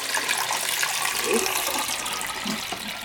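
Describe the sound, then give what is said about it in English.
Stop bath liquid is poured steadily back into its stop bottle for about three seconds, a continuous splashing gush with faint gurgles as it fills. “So I am going to pour my stop back in the stop bottle.”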